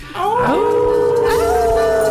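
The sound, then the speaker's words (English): Several human voices howl together in imitation of dogs, a sustained rising and wavering chorus lasting about two seconds, loud, as a group howls at the Moondog on a count of three for the final time, in September 2023, on the Moondog Show. “And we all going to howl at the Moondog for the final time in September of 2023.”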